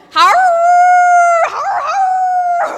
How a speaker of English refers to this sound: I've only heard a coyote a few times in my life, and it's probably only second to a pack of coyotes howling, which is what happened shortly thereafter.